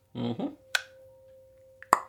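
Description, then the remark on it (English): A short vocal sound is followed by two sharp, crisp pops about a second apart, an ankle joint cracking as a person takes a step, the second one louder, over a faint steady hum. “And I took a step. Like, fuck. That was my fucking ankle.”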